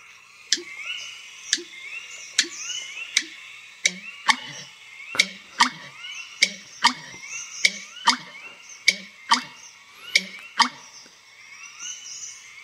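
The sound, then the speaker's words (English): An American Bittern's song: a steady series of hollow, gulping knocks repeating about once a second, over a busy chorus of other birds singing in the background. “so that is the song of the American Bittern.”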